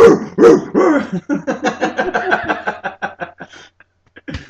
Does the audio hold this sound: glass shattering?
no